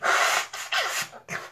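Someone blows their nose in a quick series of four forceful, rough blasts with short gaps between them. The loud, breathy honks fade slightly toward the end, with no talking.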